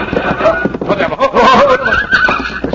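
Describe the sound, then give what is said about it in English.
A horse whinnies with rising, wavering neighs over a busy clatter of hooves in a rocky pass, loud, while a man's voice talks urgently through the commotion. “Down off your horse quickly, Pancho.”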